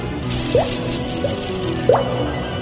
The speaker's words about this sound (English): That's a spooky, spooky dungeon, blood dripping.